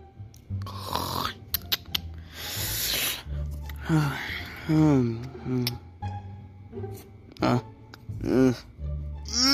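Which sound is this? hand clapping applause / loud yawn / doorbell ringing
loud yawn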